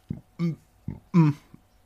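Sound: burp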